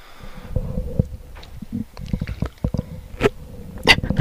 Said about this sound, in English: It's tough drinking water with these things, isn't it? Yeah, kind of. Get it out of the way, move it back.